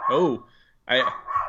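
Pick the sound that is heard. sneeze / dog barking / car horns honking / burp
dog barking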